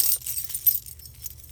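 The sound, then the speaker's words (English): A bunch of keys jangles and clinks as it is unclipped, a steady scatter of bright metallic chinks over a second and a half, with no one speaking. “Then unclip them for a sec. Let's take a look at these scary keys.”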